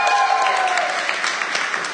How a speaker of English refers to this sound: And if you're at home, you should be clapping too, because you're able to be at home and doing this as well.